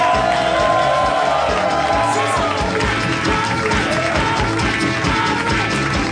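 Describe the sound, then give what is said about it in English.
A loud live audience at the Harmontown show in the Nerd Melt Theater at Meltdown Comics, California, cheers and applauds as Dan Harmon is welcomed, with whoops and shouts rising over a dense, steady roar of clapping that fills the whole stretch. “What a crowd!”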